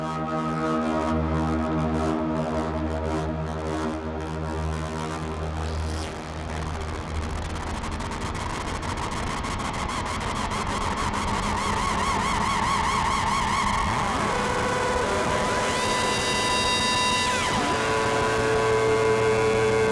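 A dense, buzzing synthesizer drone from an ARP 2600 feeding a fuzz (the jerculator), its harmonics shifting as the ARP filter is swept up and down, ending in whistling, gliding high tones over a steady low hum.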